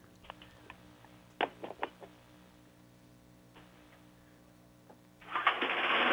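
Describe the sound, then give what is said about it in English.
A few scattered clicks and rattles from a lawn mower about a foot and a half away in a house, then a sudden loud, rasping whir near the end as its starter cord is yanked hard on the first pull. “The lawnmower's about a foot and a half away from me.”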